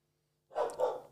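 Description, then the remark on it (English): A dog barks twice in quick succession out the front of the house, the sharp woofs moderately loud after a moment of near-silence with faint background hum. “as my dog barks out the front.”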